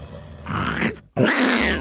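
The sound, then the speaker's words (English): A man imitates the growl of a desert lynx with two harsh, raspy bursts, loud, separated by a brief silence. The second burst is hissy and snarling. “Turn up the audio, and I'd like to see if you can match its growl.”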